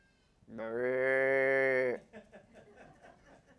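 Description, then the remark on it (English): A single loud, steady cow moo lasting over a second, followed by faint talking in the background. “Those are called sacred cows.”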